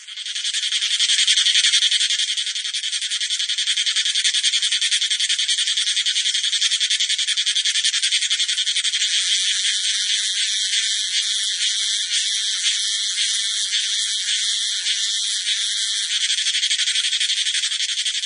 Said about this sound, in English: This is the cicada singing.